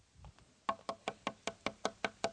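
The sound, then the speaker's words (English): Knuckles rap on a hard surface about nine times in a quick, steady rhythm, each knock sharp and of even loudness, with no talking. “Not give up, but ask, seek, knock.”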